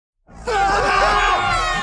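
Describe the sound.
A person's voice lets out one loud, sustained scream lasting over a second, imitating the Tom Cruise scream from a Universal movie trailer, with no other talking.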